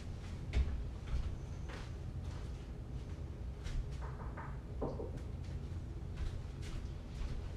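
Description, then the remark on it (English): Several soft, light taps as someone knocks on real wood, irregularly spaced and fairly quiet, with a low background hum and no talking. “Wait, let me make sure I knock on the real wood.”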